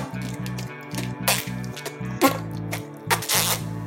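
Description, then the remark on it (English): A voice makes a playful lobster-fart impression: a rapid string of short, buzzy low sputters, roughly a dozen, broken by a few breathy spitting bursts, fairly loud. “And I think a lobster too is like this.”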